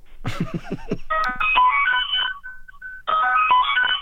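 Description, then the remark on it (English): A bright, melodic phone ringtone, played as instrumentation in a song, plays loudly in bursts of electronic notes, after a brief opening of rapid percussive hits, with a short pause before the tune repeats. “Is that a ringtone?”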